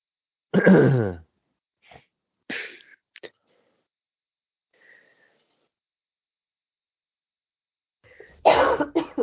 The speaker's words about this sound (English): Bless you.